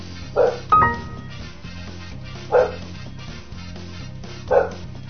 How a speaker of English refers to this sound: It's just a dog barking. I hope you can hear that.